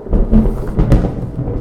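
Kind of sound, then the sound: sound effect, thunder sound effect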